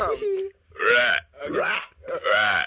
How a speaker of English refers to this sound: Shit, wait, 1 second. Like, give me, like, literally a second. That's burp number two, guys.